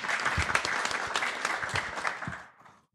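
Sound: audience applause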